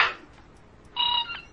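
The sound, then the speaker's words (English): The purple monkey bird, a parrot-like bird that imitates jungle animals, calls in imitation of a monkey: a brief harsh burst, a short pause, then a steady, bright, buzzy note with layered tones, ending in a quick chirp. No one speaks. “And this bird is imitating a monkey. If you listen to it, it sounds just like a monkey.”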